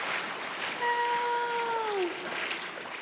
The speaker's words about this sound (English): Now he heard some splashing in the water, and he saw the ant trying to swim.